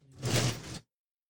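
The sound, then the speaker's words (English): A sliding door rolls along its track in one quick, rumbling swish lasting under a second, then stops abruptly, with no voices. “This door's going to be...”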